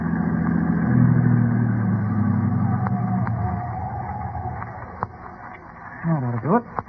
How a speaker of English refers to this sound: Yeah, this looks like as good a place to park as any. I'll drive the car off the road.